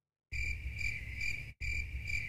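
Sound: crickets chirping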